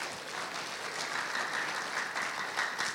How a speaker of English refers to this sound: Amen? Amen. Now you can clap.